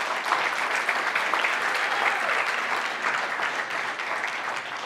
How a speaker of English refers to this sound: So if you guys would give him a round of applause as well.